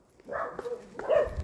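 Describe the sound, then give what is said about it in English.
A dog whimpers and lets out a couple of short, whiny barks in two bursts, fairly quiet, with some faint background rustle. “You're making the dog fall.”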